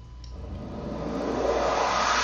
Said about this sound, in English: Whooshes, it happens like once.